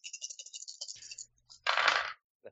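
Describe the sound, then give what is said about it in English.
Dice rolled in a tabletop game rattle and clatter in a quick burst of sharp little clicks, then tumble to a stop with a louder, brief scraping rattle and one last faint tick at the end. “Okay, I'm going to burn a drama die on that because my dice decided to fuck me.”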